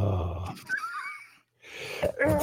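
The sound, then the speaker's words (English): A sharp sneeze bursts out with breathy rasping around it, a short silence, then another rush of noisy air. No talking. “God bless you.”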